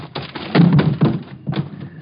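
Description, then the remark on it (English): A heavy scuffle: a series of dull thuds and thumps over about two seconds as a man is tackled and knocked cold on the ground, with a brief pause before a final impact. “You knocked him cold. Nice tackle”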